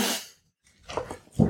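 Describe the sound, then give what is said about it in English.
A dog gives a short trilling vocalization, a few quick warbling pulses following a brief rush of noise and a moment of silence. “I'm going to give that a look because the dog's going to trill at me otherwise.”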